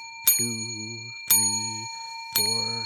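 A small bell is rung five times at a steady pace, each sharp ding leaving a bright, lingering ring, while a voice speaks briefly after each strike.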